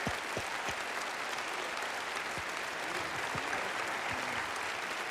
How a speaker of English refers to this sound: Brother Yun, would you come up here? And let's just give him a warm welcome and applause. And I want us really to honor him here tonight.